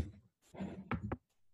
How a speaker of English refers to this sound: Did you knock on wood?